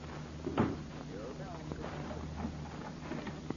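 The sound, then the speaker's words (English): A door shuts with a solid thud, followed by a few small mechanical clicks like a lock being turned, set against a low steady hum and faint background voices. “Lock the door.”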